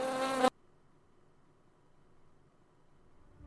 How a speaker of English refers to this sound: It's basically what bees do when they fly.